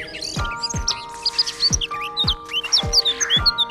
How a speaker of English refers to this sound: Does a beautiful bird sing outside your kitchen window?